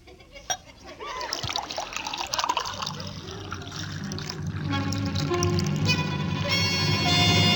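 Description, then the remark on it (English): Homemade elderberry wine is poured steadily into a glass, the pitch rising as it fills, growing louder toward the end; a brief clink sounds early on and faint voices linger in the background. “Elderberry wine? We make it ourselves.”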